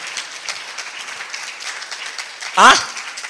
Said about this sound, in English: Oh, the way you are clapping, I'm not sure you got what I said.